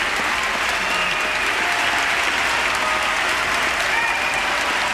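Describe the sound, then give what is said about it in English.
Sustained, dense applause from the entire joint session of Congress at the 2007 State of the Union address, many hands clapping together in a steady, loud roar that holds evenly for the whole stretch without pause. “This is the entire joint session applauding.”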